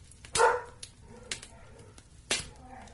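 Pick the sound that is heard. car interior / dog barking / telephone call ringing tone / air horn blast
dog barking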